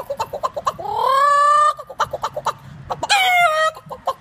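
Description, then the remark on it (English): A voice imitates a chicken: a run of quick, clipped clucks broken by two drawn-out squawking calls, fairly loud, with no talking. “Pretty good chicken.”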